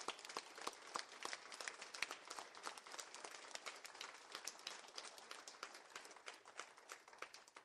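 An audience applauds with dense, overlapping hand clapping that stays steady and fairly loud from start to finish, many hands together with no one speaking over it.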